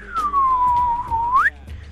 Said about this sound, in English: A dog that you're whistling to? What's going on over there?